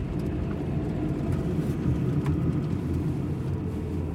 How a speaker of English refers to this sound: Until Porter pulls the car to a stop across the street from Luke's house.